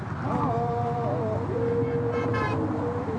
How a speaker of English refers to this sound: The group steps onto a pedestrian walkway. The bridge shakes and hums from the force of cars. It's unbearably loud. The walkers sing, but the noise drowns out their songs.